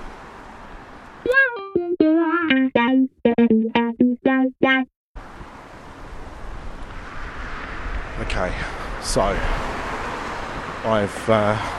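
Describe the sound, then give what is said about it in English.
A strong wind roars steadily into the microphone, a thick, rumbling blast that runs for several seconds while a person talks over it, after a brief burst of bright, buzzy tones. “It's still windy, still noisy, as you can hear.”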